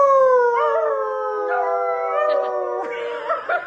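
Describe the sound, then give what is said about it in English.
Long, loud howls from people and a dog blend together, sustained and slowly sliding downward in pitch, with a few wavering breaks and yips near the end. There are four howls: the first is a human imitating a dog's howl, and the last is the dog. “Okay, so which one of those four did you think was the dog? That first one was a human.”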